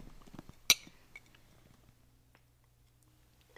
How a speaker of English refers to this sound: Yo, I know you're not drinking yet, but give me a cheers.